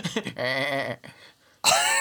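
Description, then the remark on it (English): A person imitates a goat's bleat with two quavering, nasal calls: a sustained wobbly one, a brief pause, then a louder, harsher second bleat. “Bleating the goat word for shame as they're falling.”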